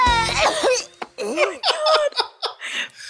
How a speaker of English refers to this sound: I'm glad they threw in that gross wet cough at the end. Because she falls over and gets like splattered and stuff.